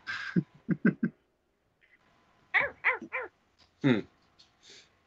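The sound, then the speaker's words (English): A Labrador barks in short, sharp bursts: a quick run of three yips, a pause, then another cluster of barks and one final bark, with whiny, high-pitched edges. “We have two very sweet, very stupid Labradors.”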